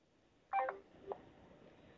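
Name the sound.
telephone keypad dialing tones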